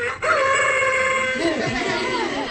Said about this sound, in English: In this case, it makes a plastic rooster crow. You know that roosters like corn, but this one here likes the solar energy.